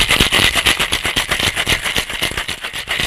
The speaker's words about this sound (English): Pour into a cocktail shaker with ice cubes. Shake well and strain into a chilled cocktail glass.